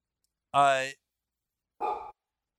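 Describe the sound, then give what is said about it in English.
A dog barks twice, a longer drawn-out bark followed after a short pause by a rougher, shorter one, with silence around them. “Let me go take care of the dog.”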